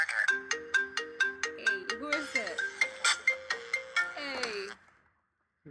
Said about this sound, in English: Hey, guys. We got a call. Hold on. Check out the ringtone.